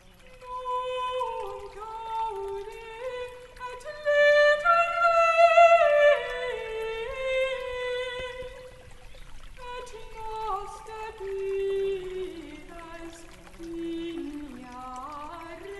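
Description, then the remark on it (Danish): Stream water trickles and gurgles steadily where the stream ends in a small man-made pond, bubbling with shifting watery tones, moderately loud, with no talking. “Der hvor vandløbet ender, og det ser ud til at være en lille anlagt dam, hvor der står en gammel visen dunhammer.”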